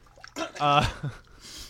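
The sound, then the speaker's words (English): A sudden wet sputter as a mouthful of water is spat out, tangled with a short voiced burst like a choked laugh, then a few quieter splashy dribbles trailing off. “I actually spit up my water, you bastard.”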